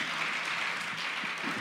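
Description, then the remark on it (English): An audience at a singer's performance at the Shepherdsville Music Barn in Shepherdsville, Kentucky, claps in a dense, steady wash of applause that holds at an even, fairly strong level from start to finish, with no voices standing out. “So how about a round of applause for them?”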